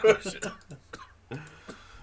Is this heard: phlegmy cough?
yes